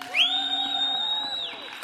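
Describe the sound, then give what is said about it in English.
An audience cheers in answer to who expects the Denver Broncos to win. One loud, sustained high whoop rises at the start and holds steady for over a second above the broad crowd noise before it drops away. “But just by applause and by cheering, how many of you expect, think, hope for the Denver Broncos to win?”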